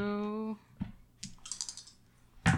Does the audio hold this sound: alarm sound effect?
no